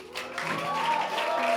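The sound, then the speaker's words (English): A church audience applauds the Lord in a steady, continuous wash of clapping that holds at an even loudness throughout, with a faint sustained tone running underneath. “Come on, let's give the Lord another applause.”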